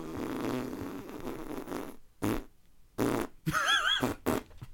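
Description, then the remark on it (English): A long, sputtering fart from a man rumbles for about two seconds, followed by several shorter bursts and a squeaky, wavering toot, loud with brief silences between. “just relieving himself.”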